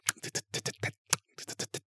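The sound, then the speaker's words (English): A person imitates the rhythmic clicking noise a creature made with its tongue: about eleven sharp, crisp clicks in quick groups with a brief gap midway, fairly loud and with no talking. “Yeah, it was like it was making this clicking noise with its tongue, like.”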